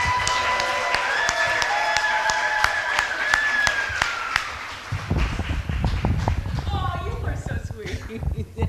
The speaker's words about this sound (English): Ladies and gentlemen, give a round of applause.